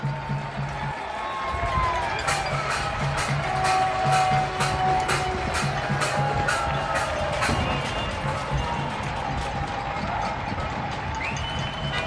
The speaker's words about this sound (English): I'll post up and I'll include it on the podcast here of all the clapping here. So here's the clapping.